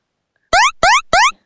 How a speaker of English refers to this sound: Everyone can ponder that beep, one. Beep, beep, beep.